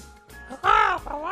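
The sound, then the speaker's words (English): Loud, raspy bird caws: one long harsh call, then a second shorter one right after, like crows squawking. “Because you're trying to get a good night's sleep and it's a cacophony.”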